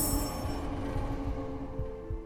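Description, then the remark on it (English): The Rochdale train rumbles steadily along the tracks as it approaches in the distance, a continuous low, heavy roar with a faint high metallic whine at the start and no voices. “But still, he refused to budge. as the tracks rumbled.”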